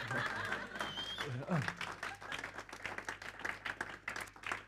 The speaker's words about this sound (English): Thanks again for the awkward clap, guys. I feel like it's like kind of halfway. It's like you either don't clap or just, yeah.